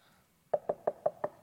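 Five quick, evenly spaced knocks on a door, fairly loud, after a moment of near silence. No voices.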